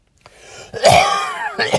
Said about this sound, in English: There, I coughed again. I don't care. It's my podcast. If you've been screaming into a phone for 25 minutes... you'd want to cough too.